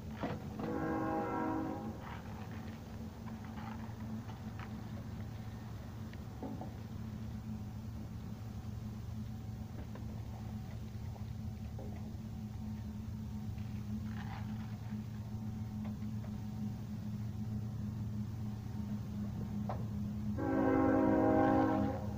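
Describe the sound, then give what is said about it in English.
A train rumbles steadily past, its deep low drone continuous throughout, with a loud blaring horn blast at the start and another near the end. “Amplified train.”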